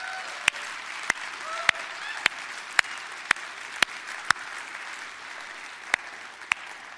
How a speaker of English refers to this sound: I think your church deserves an amazing applause.